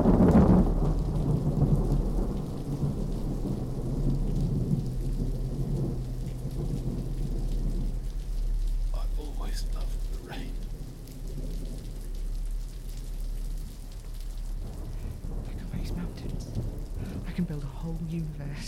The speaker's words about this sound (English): And now it's raining in my garden, and it's supposed to be perfect, and it isn't, and it is your fault.